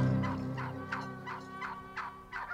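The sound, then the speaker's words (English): A North American wild turkey gobbles in a rapid, rolling burst of throaty, warbling notes, about seven quick pulses that rise and fall, loud and on its own with no talking. “All are welcome at this roundtable conversation about one of the wariest creatures in the woods. That's the North American wild turkey.”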